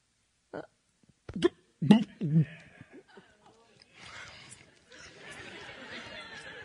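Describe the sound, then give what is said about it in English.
A voice makes a few short, guttural burp-like noises in quick succession, imitating a cow burping up its cud to chew it again, followed by a wash of murmuring crowd chatter and light laughter. “And they start chewing, they burp it up, and they start chewing it again.”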